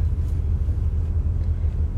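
A low, steady car engine rumble, continuous and fairly loud for the whole stretch, with no voices over it.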